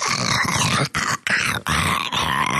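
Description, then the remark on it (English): A voice imitates the growl of a giant bug creature breaking out of its chamber: a loud, harsh, raspy rumble delivered in four or five gravelly bursts separated by brief breaths, with no other talking. “Instead of hearing Stitch giggling and chuckling behind you, and the speakers behind you, imagine that giant bug going...”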